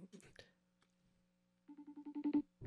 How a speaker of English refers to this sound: I'm FaceTiming her. Very aggressive, but...